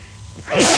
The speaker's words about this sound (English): … is sneezing.